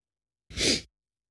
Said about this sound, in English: Sorry, the sniffles.